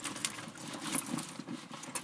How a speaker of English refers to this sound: Well, actually, now that I remember, let me just go into my purse here. Let me just open this puppy up and see what we can find.